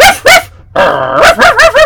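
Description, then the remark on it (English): A dog barks loudly, two sharp yaps, then a drawn-out whining howl, followed by a quick run of three more barks. No one speaks. “I thought you were going to keep the dog quiet.”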